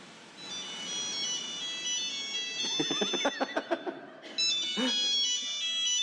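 An alarm clock rings with a bright, melodic electronic chime, sustained tones broken midway by a quick run of sharp pulsing beeps, fairly loud, with no voices.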